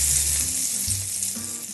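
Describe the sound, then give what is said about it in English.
Salmon sizzles steadily in hot butter in a pan, a continuous crackling hiss with a low hum beneath it and no voices. “There's the butter in the pan.”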